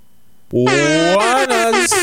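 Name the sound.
air horn blast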